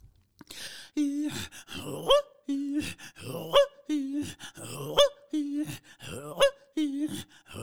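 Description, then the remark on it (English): Two women throat singing in a fast, repeating back-and-forth of low guttural grunts and sharp rising honks, imitating the calls of a goose in flight, steady rhythm with no other sounds. “So that is inspired by the, which is the sound of the goose makes as it flies over.”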